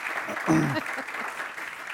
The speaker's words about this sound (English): All right, let's give a round of applause to getting through the lightning round.